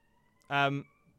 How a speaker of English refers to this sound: Is that an alarm test or are you on fire? It's just Wednesday. It's we do this every time.